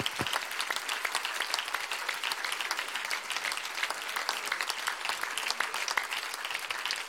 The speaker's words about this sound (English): So would you now let these people and everyone who serves in ministry know. You can stand if you would like. You may be applauding for yourself, but you're applauding for your peers, for your leaders in ministry.